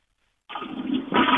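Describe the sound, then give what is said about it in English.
After a short silence, a toilet flush bursts in with a loud rushing of water that swells and grows louder near the end, with no voices. “I think he's flushing it.”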